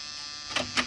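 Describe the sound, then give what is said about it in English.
A door buzzer rings with a harsh, steady electric drone, broken by two short, brighter pulses near the end. No voices are heard. “Try the buzzer, Muggerman.”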